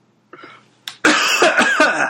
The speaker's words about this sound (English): I am going to cough. Hold on.